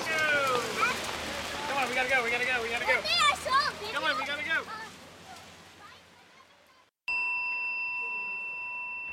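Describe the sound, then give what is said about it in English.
A small gong on a memorial altar with incense and candles, set up in the lobby of the Cadillac hotel, is struck once after several seconds of busy chirping sounds, its bright, clear tone ringing out steadily and sustaining to the end. “There's an altar set up with a little gong, incense, candles.”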